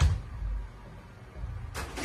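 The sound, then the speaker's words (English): A Spot robot dog pushes a door open: a soft thump, a low mechanical rumble, then a short, bright rattle as the door swings, with no talking. “It knows how to open doors.”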